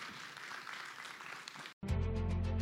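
An audience at N Squared claps steadily for Jordan Shapiro for under two seconds, a dense wash of many hands, then it cuts off abruptly and loud music with a heavy bass line takes over.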